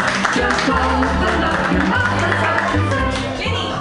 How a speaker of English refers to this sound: Put your hands together, everybody, and clap them wildly for Jesse Warren.